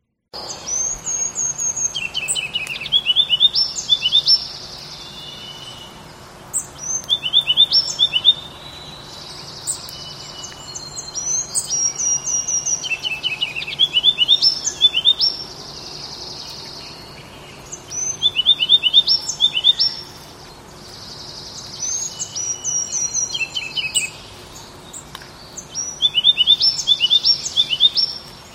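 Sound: ruby-crowned kinglet song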